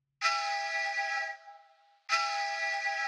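A phone ringtone, the one set for a wife's goodnight calls, sounds twice: a bright, buzzy electronic tone rich in harmonics rings for about a second, fades out, then starts again loudly. No one speaks.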